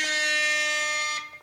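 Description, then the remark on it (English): A single loud air horn blast, a harsh, brassy tone held steady for just over a second before cutting off abruptly, with no talking over it. “Oh, we actually did get some nice comments about the air horn, and one listener did say bit stingy there on the air horn.”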